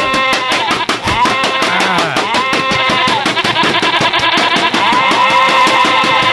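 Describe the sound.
A person bleats like a sheep in a loud, drawn-out, quavering voice, the rapid tremolo pulsing steadily through the whole stretch with no other talk.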